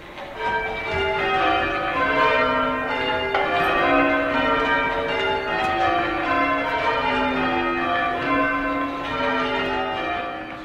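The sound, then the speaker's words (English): Church bells ring continuously, layered peals overlapping in a dense, steady wash of bright tones that stays loud and full throughout, with no voices. “It's meant to be a background sound. It's, bells are ringing.”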